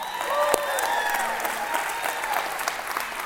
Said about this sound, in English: If you're new, we do this every week, okay? The moment the bumper's over, like, we just clap, okay?